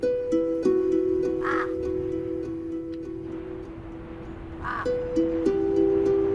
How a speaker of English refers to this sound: The only animal life in the volcano, crows, come to scrounge a few crumbs near the tents.